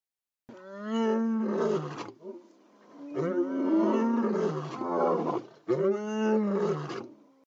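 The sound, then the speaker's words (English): A lion roars three times in close succession, each call loud, deep and rumbling with a strained, harmonic growl, with no one talking. “Yes, I do have a lion call for you all, and here it is.”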